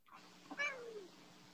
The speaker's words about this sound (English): Look at the kitty. So cute. Oh, what a sweetheart.